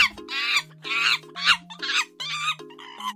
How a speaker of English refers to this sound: Monkeys, they gibber.